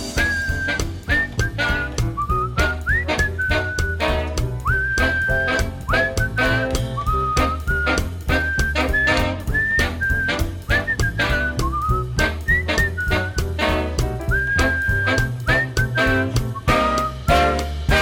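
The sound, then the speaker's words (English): A clear whistled melody with sliding notes carries over a full band backing of steady drums and bass, sustained throughout and fairly loud, with no talking. “Whistle solo.”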